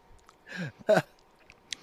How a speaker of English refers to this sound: That tastes like Play-Doh. It's like chewing Play-Doh. Looks like Play-Doh.